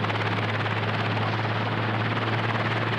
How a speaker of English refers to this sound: Helicopter's taken off.